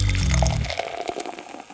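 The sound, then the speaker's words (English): Beer pours into a glass, a gurgling glug at first that thins into a steady fizzing, bubbly stream. No voices, just the liquid and foam. “So grab yourself a glass, pour yourself a beer, and get ready to hop forward in the brewing and beer business.”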